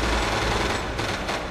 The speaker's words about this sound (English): I'm hearing gunfire.